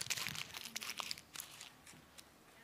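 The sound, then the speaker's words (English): A sheet of paper being crumpled up, a quick flurry of sharp crackling and crinkling bursts that gradually thins out over a few seconds, with no voices. “If marriage is just a piece of paper, here's what you can do.”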